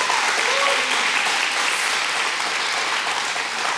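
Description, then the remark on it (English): An audience breaks into a round of applause for the mothers in the room on Mother's Day, a dense, steady wash of many hands clapping that holds at an even, fairly loud level for the whole few seconds. “Let's give a round of applause to the moms in the room.”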